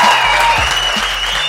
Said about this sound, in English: Round of applause.